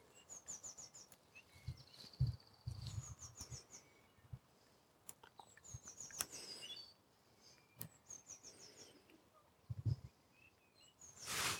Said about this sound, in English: Definitely nearly bedtime for the animals, well, for the daytime ones, because the birds have gone a lot quieter.